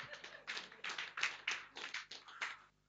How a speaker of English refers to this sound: Clap your hands.